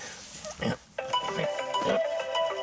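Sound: mobile phone ringing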